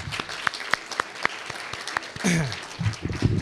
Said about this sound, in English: if we can also give another round of applause for Dr. Shivers, thank you so much